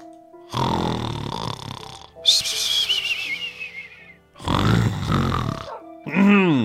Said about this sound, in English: Ooh, the snoring should be great with the sniffle nose. The snoring should be great indeed.